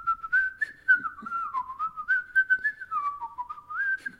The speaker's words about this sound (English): Like, I'm literally just took two breaths within that. Dang. Like, yeah. I whistle while I breathe in, whistle while you breathe out.